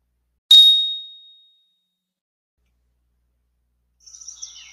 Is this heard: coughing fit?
no